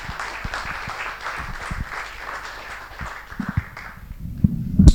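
An audience applauds with steady, dense clapping that thins out after a few seconds, followed by a few low thumps at the end. No one speaks.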